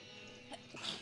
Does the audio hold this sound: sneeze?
yes